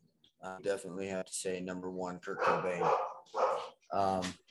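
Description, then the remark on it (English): A female bulldog named Princess barks and yowls in a quick run of short, loud, vocal bursts, about six in a row with brief gaps, some stretched into whiny, howl-like yips. “She's a bulldog and she rules the house.”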